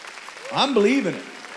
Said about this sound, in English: And if you believe it, clap your hands and give God praise.